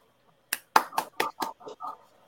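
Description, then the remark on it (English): One person claps about seven times in a quick, slightly uneven rhythm, the sharp hand slaps fairly loud and easing off a little toward the end, with no one talking. “Look, I got one clapping and one shaking his head.”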